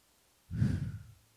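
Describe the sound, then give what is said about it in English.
A single deep, breathy exhalation during a deep-breathing practice starts after a brief quiet moment, rushing loudly, then tapering off gradually with no speech. “So basically he says, do this breathing practice every day. Take big deep breaths.”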